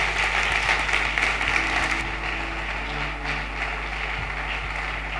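An audience gives a sustained clap offering and standing ovation unto the Lord before the second session, dense crowd applause that stays steady and fairly loud for the whole stretch, with a low electrical hum underneath and no voices.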